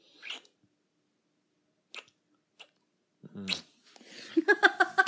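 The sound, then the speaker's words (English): A few short, wet smacking kisses spaced apart, fairly quiet, followed by a brief voiced murmur and then a rising, whiny vocal sound at the end. “You definitely kiss really well for someone who's never kissed anybody.”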